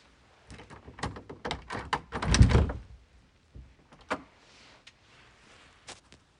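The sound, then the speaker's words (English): A door slides open to let the dogs in, with a rattling, scraping rumble that swells to a loud thud around midway, followed by a few lighter clicks and taps as it settles, with no talking. “if you're wondering what in the world just happened, I had to let the dogs in.”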